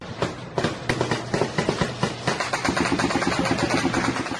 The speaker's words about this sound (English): If you live in Haiti these days, whether you're rich or poor, Chances are a typical night in your neighborhood includes gang gunfire like this.